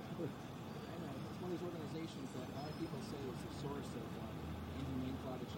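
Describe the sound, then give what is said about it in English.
A garbage truck engine rumbles steadily, a low continuous drone lasting throughout, with indistinct voices chattering over it. “a fucking garbage truck there.”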